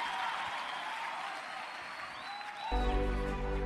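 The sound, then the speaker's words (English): An audience claps steadily, a dense crackle of many hands filling the space, until a loud sustained organ chord swells in underneath near the end. “Come on, clap them hands and scream hallelujah.”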